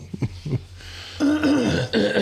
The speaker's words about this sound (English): I'm coughing. Sorry, folks. I just got done eating a really good supper. Fried chicken.